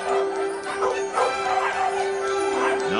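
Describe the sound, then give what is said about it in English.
Several small dogs yip and bark in overlapping bursts at a fireworks, candy and puppy dog store, a busy chorus of high-pitched puppy noises with a steady tone humming underneath. “here's where you'll be working. The fireworks candy and puppy dog store.”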